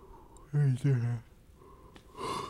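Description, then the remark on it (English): A loud yawn: a stretched, voiced groan in two long pulses with falling pitch, trailing off into a soft, breathy exhale. “We could be yawn, bro. Yawns are contagious.”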